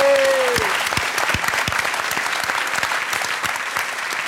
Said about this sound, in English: Before we close, I'd like to thank the Daniel K. Inouye Institute, as well as the Japanese American National Museum for having us here tonight and make this program possible. So big round of applause for them, please.